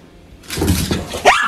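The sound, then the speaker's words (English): A female dog born deaf makes a brief excited vocal sound, a quick rising whine or yelp, amid rustling noise, when it is time to go for a walk, with no one speaking. “And a feel-good video, too, Sky. With the deaf dog.”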